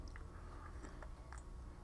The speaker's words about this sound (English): We're gonna take a little coffee sip and we're gonna go right into it.